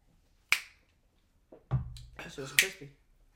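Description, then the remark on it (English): Several people snap their fingers at random on request: two crisp, sharp finger snaps ring out a couple of seconds apart, with a fainter click and low murmuring voices in between them. “Randomly, I want everybody to go in and snap.”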